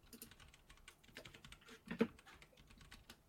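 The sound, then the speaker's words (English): Rapid, irregular clicking of keys on a computer keyboard, fairly quiet, with one slightly heavier keystroke partway through and no voices. “is typing.”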